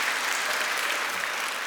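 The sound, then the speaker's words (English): A church audience claps steadily together in praise after the choir led morning worship, a dense, even wash of applause at a consistent loudness from start to finish, with no voices rising above it. “Can we give another hand clap of praise for that?”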